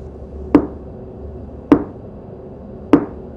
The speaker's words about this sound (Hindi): वही 3 नॉक्स जो इससे पहले मुझे अपने लिविंग रूम से सुनाई पड़ी थी और अभी अभी इंस्टाग्राम के एक वीडियो में।